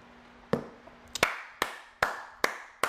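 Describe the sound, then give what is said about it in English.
Six sharp hand claps at a slow, fairly steady pace, each crisp and bright with a short ringing tail, clear against a quiet background with no talking. “I'm gonna put my hands on it because I'm already clapping for you.”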